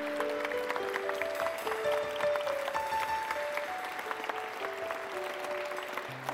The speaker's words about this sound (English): The ladies standing here, head that way. Clap for them again.